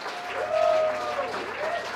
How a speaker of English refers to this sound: welcome back, everyone. Come on, a round of applause